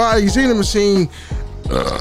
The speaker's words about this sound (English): Burp on the mic because I'm blessed.